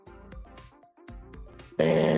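A voice imitates a dog as a game buzzer, with two rough, growly woofs followed by one much louder, sustained bark at the end, all in a short burst with no other talking.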